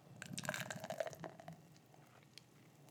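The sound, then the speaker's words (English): A stout beer pours into a glass with a bubbly, gurgling rush and some bright splashing for about a second and a half, then settles into a faint fizz with no voices. “I got to stop rousing as much head.”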